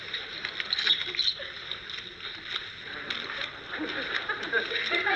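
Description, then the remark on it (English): Playing cards being shuffled before dealing, a steady stretch of soft, crisp riffling and flicking that carries on for several seconds with quick little snaps scattered through a hissy, papery texture. “What are you doing? I'm shuffling.”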